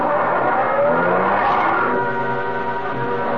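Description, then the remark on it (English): A waiting car's engine revs up and accelerates on a road, its pitch rising steadily before settling as the vehicle pulls away, loud with no voices. “Then we turned toward the road, got into a car that was waiting for us.”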